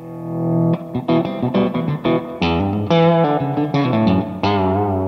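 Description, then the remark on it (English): Electric guitar on its Seth Lover neck pickup plays a warm, rounded melodic phrase of sustained notes with light overdrive and a touch of effects, fairly loud, with no talking. “That neck pickup is just a secret weapon.”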